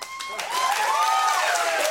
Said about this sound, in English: Okay, now watch this. If that was your miracle, how would you clap?